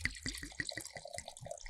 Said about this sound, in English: Oh, very poetic sounding pour this morning. The first stanza is Dane Sellers' Sauvignon Blanc.